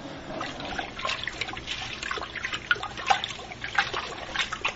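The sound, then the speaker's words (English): Cooled beer wort swirling and sloshing steadily in a large brew kettle as it is stirred into a whirlpool after hopping and the boil, a continuous churning with small splashes and gurgles throughout, and no voices. “doing a whirlpool”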